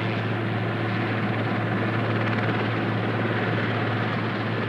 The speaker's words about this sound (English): Helicopters are coming in. I like helicopters. They're pretty cool. I don't understand how it works. I mean, I do, but it still seems pretty amazing. They're really coming in.